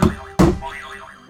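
A malfunctioning game buzzer goes off on its own with two quick, punchy bursts followed by a springy, wobbling tone that warbles up and down before fading, with no one talking over it.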